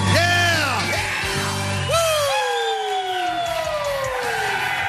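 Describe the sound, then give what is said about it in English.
A lively crowd cheers and whoops in the morning at 93.3 WMMR's Camp Out for Hunger event, with rising and falling yells overlapping in a dense, loud roar that carries on steadily for several seconds. “Fantastic crowd here this morning.”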